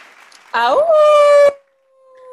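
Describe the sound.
A person lets out a loud, close wolf-like howl lasting about a second, the voice sliding upward and then holding a steady tone before cutting off, followed by a faint lingering hum.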